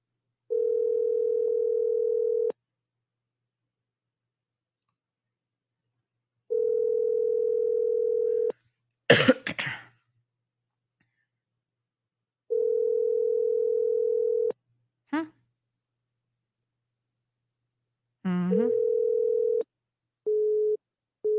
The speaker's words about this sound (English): Anybody surprised that it rang out? Let's call it again.